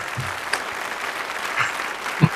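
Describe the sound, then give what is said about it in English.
Steady audience applause, a dense wash of many hands clapping evenly throughout, with a few sharper claps standing out now and then and no one speaking over it. “And thank you, your audience, for the applause.”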